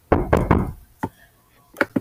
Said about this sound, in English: There was a knock at Tammy's bedroom door.